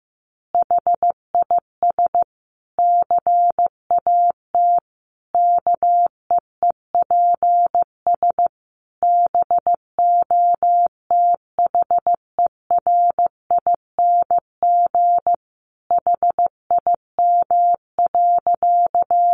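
Morse code beeping at a steady moderate pace of about 15 words per minute: a single clear mid-pitched tone keyed in short dots and longer dashes, with brief pauses between words and no voices.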